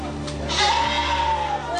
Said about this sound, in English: These are the sheep they bought, Awasis. They're tough, bred specially to be shipped alive.